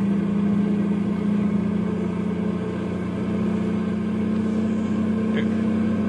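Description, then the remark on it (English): A heavy truck loaded with nitroglycerin drones steadily and loudly, a constant low rumble with little change in pitch as it rolls downhill at dawn toward the town of Landslide. “Les and his truckload of nitroglycerin is heading for Landslide. It's dawn now as Les starts his run downhill.”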